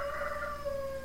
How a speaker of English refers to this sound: And as you could hear, I am on my mom's ranch, so you might hear a rooster cock-a-doodle-dooling or some other type of creature. And thank you for that, rooster.